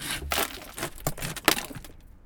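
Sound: glass being smashed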